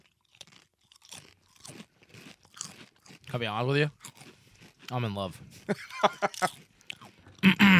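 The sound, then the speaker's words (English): Loud, crisp crunches from someone chewing a crunchy fried snack, coming in irregular bursts between and under a person talking, with a sharp burst of crunching at the very end. “It does taste a lot like a crunchy chicken skin, doesn't it?”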